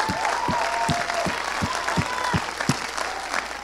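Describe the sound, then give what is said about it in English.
An audience claps their hands together at a preacher's call to clap if they are believing, in a steady, even rhythm, roughly two or three sharp claps per second, over a continuous wash of crowd noise and faint voices. “Come on, clap your hands if you're believing.”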